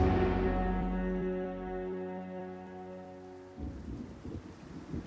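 A low, sustained droning tone fades slowly, then rain suddenly picks up into a denser, heavier patter for the final seconds, steady and with no voices.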